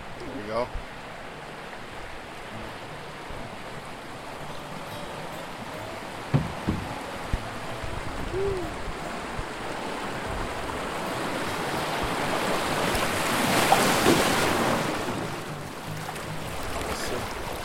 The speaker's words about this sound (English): Oh. A little bit of moving water.